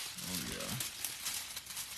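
Crisp crinkling of shiny silver wrapping paper being handled, a steady rustle with sharper crackles throughout, while a voice briefly murmurs near the start.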